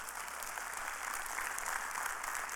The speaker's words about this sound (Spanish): Y Dios hace algo increíble. Un aplauso al Señor por ello.